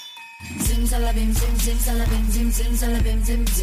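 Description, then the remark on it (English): A bright, repeating bell melody rings out over a loud, thumping bass beat in a song intro; the same bells also play in the chorus hook. Each note recurs in a steady pattern, with no voices. “We have those bells and that started the whole song.”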